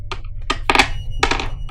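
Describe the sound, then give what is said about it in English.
Dice rolled for a dexterity check clatter across a hard tabletop in a quick series of sharp clicks and taps, with a few tumbling rattles, fairly loud, and no voices. “You're gonna roll your dexterity for me, please.”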